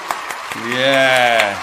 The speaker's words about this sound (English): So I think we'll give them a proper round of applause. An LA round of applause. How about that, eh? Yeah. That's an LA.